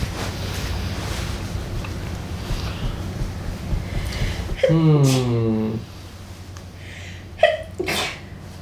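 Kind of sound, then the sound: human body sound, sneeze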